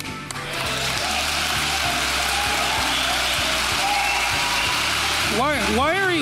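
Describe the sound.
A crowd claps steadily for several seconds, a dense wash of applause, with a few rising and falling whoops or cheers near the end and murmuring voices underneath.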